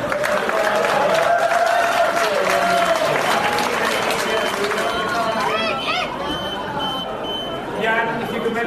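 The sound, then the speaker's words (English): A large crowd at the auction of a Banksy painting reacts loudly, with dense applause and excited voices throughout; near the end of the auction the noise dips slightly as a few short electronic beeps sound through it. “You should hear the crowd reaction.”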